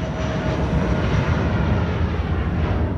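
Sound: airplane engine in flight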